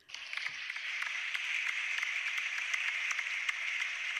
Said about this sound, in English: let's give a little special round of applause, everybody.